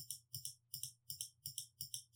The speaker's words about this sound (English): Can you hear my mouse click?